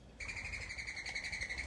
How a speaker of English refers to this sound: Right next to me right now, there are some doves building a nest.